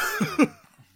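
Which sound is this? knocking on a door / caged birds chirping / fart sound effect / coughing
coughing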